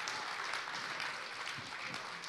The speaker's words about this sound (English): Isn't that so beautiful? That's the heart of God. Come on, that deserves a bigger clap.